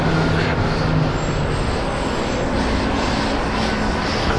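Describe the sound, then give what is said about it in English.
Heavy trucks rumble past on a road, a loud, steady roar of engines and tires with a low droning hum that fills the whole moment, no one speaking. “sorry, a lot of trucks.”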